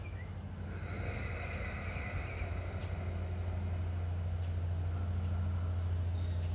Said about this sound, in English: I'm sure you can hear the wind. And that's my indicator. As I sit in meditation each moment, I hear the wind every time I get a thought that's in line with Mother Nature.